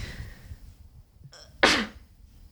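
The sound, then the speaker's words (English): A single sharp sneeze bursts out, preceded by a brief intake of breath, with faint background murmur before and quiet afterward. “I can't tell if you're coughing, sneezing, or vomiting or dying. Sneezing.”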